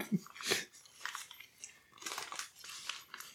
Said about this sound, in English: Right, the crunch is bomb. See, that's going to lose points for me. I don't like crunch. The crunch is bomb on the Popeyes.